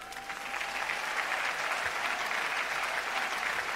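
Sustained applause from an audience at an Amway business talk, clapping for the speaker's upline (sponsor): a dense, steady patter of many hands clapping that swells in the first half-second and holds at an even, fairly loud level throughout.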